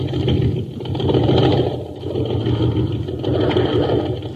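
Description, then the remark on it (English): A low, sluggish jet boat engine, the Shooting Star running on ordinary fuel at an aqua jet boat race, drones steadily and fairly loud, its rumble swelling and sagging slightly like a boat motor idling without much power. No one speaks. “Gang, this is Captain Dick Tufeld at an aqua jet boat race on Mars.”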